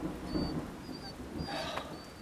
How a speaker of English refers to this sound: I got a feeling that he'd always hated the sound of thunder. Oh, it's okay. I don't like thunder either.